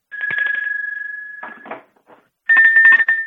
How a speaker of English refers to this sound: Here's an example of first a cowbell, and then an almost identical size bell that is round that we call a T-bell, also made out of steel.